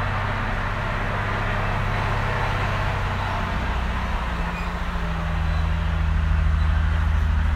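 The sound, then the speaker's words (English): A heavy truck engine labors steadily coming up a hill, a loud rumble with droning low tones that shift pitch midway as it works, lasting throughout with no one speaking. “Coming up the hill, so I don't know that it'll get quieter.”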